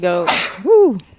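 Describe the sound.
A single loud sneeze bursts out mid-conversation, a short breathy blast between speaking voices, followed by someone's drawn-out rising and falling vocal exclamation.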